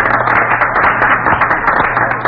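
An audience applauds in a steady, dense wash of many clapping hands, fairly loud and unbroken for the whole couple of seconds, with no voices over it.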